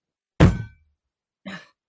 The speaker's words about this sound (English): The trick is not to dribble, then you bang the bung.